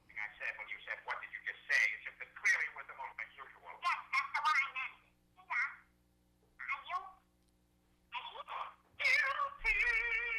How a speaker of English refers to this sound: That's your ringtone?